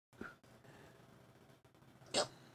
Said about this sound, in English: It's a hiccup and a burp at the same time. A herp.